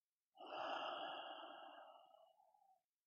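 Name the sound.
slow deep breathing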